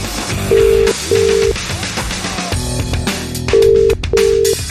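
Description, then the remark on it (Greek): Telephone dialing tones as a call is placed: four steady, loud beeps in two evenly spaced pairs, each about half a second long, sounding over a busy background of music with no talking. “Δεν παίρνουμε τηλέφωνο.”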